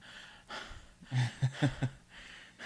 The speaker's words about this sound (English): breathing hard